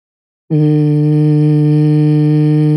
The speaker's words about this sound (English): And the releasing is just take 3 deep breaths and hum or buzz it out. So you can go like this.